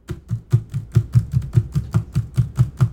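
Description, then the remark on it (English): Mock typing: a quick, steady run of about fourteen dull, thumpy taps at an even pace, heard alone with no talking. “Was that your mock typing?”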